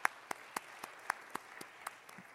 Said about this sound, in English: Do you like your ketchup cold or room temperature? The cold ketchup people, show of applause.